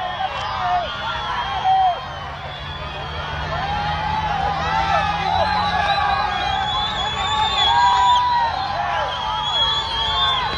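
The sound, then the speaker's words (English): A large, agitated crowd of hundreds of migrants rushing the border fence near Loop 375 and Midway at night shouts and yells continuously, many overlapping voices with scattered whoops and cries rising over a dense, loud roar of babble that never lets up. “this was last night, a charged up crowd of hundreds, if not thousands, of migrants attempting to rush the border fence at the section just adjacent to Loop 375 and Midway.”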